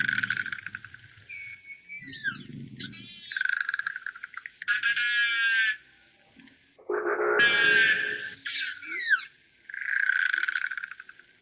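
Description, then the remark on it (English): Narwhal vocalizations on an underwater recording: bursts of rapid clicks, buzzing pulses and short rising and falling whistles repeat over several seconds, fairly loud, with a low rumble beneath. “Narwhal again.”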